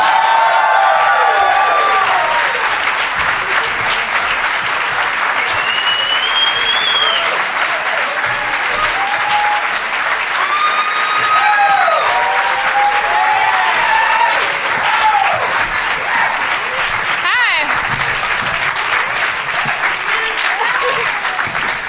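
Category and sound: crowd, audience applause and cheering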